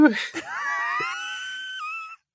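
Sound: voice imitating ambulance siren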